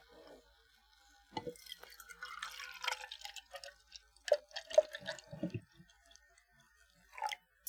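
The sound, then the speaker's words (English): A drink being poured into a cup, a quiet trickle with small splashes and drips that start and stop over several seconds, with no one talking. “Let's get a nice pour here.”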